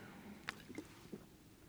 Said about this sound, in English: But if water is not pure, then it's got something in it, right? It's got something that's not fully water. I'm going to drink this trusting this one's pure.